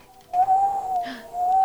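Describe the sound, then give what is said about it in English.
A voice imitates an eerie wind whistling past the entrance to a cave: a steady, slightly wavering mid-pitched tone held for most of a second, a short dip, then the tone returns. No talking. “And the wind kind of whistles past the entrance to this cave and makes a really eerie kind of...”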